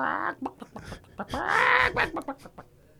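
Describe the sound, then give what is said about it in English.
A person's voice imitates a clucking chicken: a quick series of short, squawky bawks around one longer, drawn-out squawk in the middle, fairly loud and uneven in rhythm. “just bawk, bawk.”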